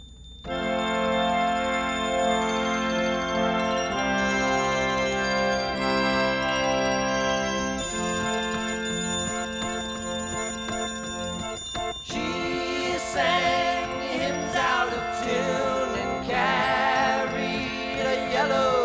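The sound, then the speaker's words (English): A music track with bright, ringing chimes panned to the left in the stereo mix, layered over sustained, shifting chords; the chimes stay clearly audible throughout, and a singing voice joins about two-thirds of the way in. “At 28 seconds, there's some chimes in the track that are panned over to the left in stereo, and they're very audible, but in mono, they're pretty buried.”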